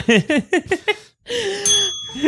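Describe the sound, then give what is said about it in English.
A burst of rhythmic laughter, then a small handheld bell rings out with a bright, sustained metallic tone that lingers briefly before fading. “I need a bell too.”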